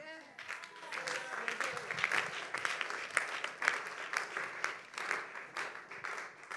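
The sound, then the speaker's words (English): An audience claps together in a dense, steady burst of applause that holds at an even, fairly loud level for several seconds, with a few sharper claps standing out from the crowd. “You don't clap like you are Christians.”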